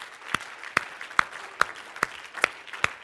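A group claps hands together as a hand clap of praise to the Lord, in a steady, even rhythm, about seven sharp unison claps over a soft wash of room noise, with no one speaking.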